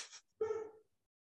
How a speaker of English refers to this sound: Why is my dog barking? Do you hear him?